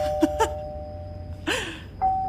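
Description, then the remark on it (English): A doorbell is pressed over and over, its electronic chimes ringing several times in quick, uneven succession, fairly loud, with no voices. “And then just continually presses the doorbell like 30 times until the person comes to the door.”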